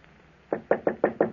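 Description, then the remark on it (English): A quick run of six firm knocks on an office door, evenly spaced, following a brief quiet moment with no voices. “I was in my office when I heard a knock on the door.”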